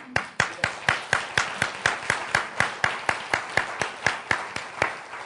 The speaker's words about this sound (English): I haven't introduced them, so you have no idea who you're applauding for at the moment.